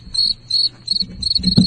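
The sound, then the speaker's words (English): A cricket chirps in a steady series of shrill, pulsing trills, clear, with no talking and a soft low thump near the end. “I think this cricket's going to laugh at me.”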